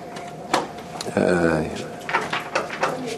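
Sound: door being shut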